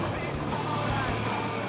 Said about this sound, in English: and peels out in the parking lot. The powerful engine of the 1970 Plymouth Roadrunner Hemi sounds not only like a roaring jungle tiger, but of a tribute to American muscle everywhere and the great tradition of uptake in these beautiful classic cars.